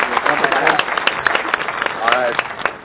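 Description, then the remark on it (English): A short crowd applause sound effect, dense scattered clapping running throughout with a few cheering voices rising above it, steady and fairly loud for its whole length. “I got a little crowd applause.”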